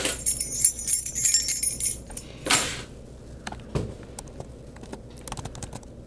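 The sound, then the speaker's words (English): Wind chimes tinkle with bright, high metallic tones for about two seconds, then give way to a burst of rustle and scattered soft clicks and taps. No one speaks. “You hear those wind chimes?”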